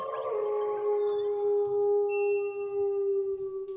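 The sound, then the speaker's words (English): A long, sustained wolf howl holds a steady mournful pitch for several seconds, with a slight rise at the start and a slow fade, heard alone with no talking. “And until next time, let me get a howl.”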